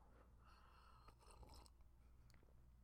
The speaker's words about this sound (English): Let me take a little sip of coffee first. A little bit of that fucking cafe. For my soul, bro.